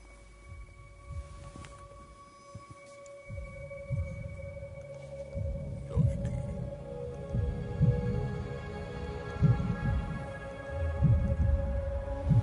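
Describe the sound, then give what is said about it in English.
A steady, rhythmic heartbeat sound from a pair of shoes with a built-in heartbeat thumps low and muffled, repeating throughout over a faint constant electronic hum, with no one speaking. “Shoes with a heartbeat.”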